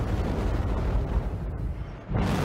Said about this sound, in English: Here's the Herald thrusters for a quick comparison. So you can hear that engine there. It's raw. You're strapped to a rocket.